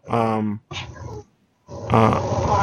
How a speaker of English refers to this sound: oh, there's a cat. The audio is... the microphone is apparently very, very good, because the cat was meowing behind my back.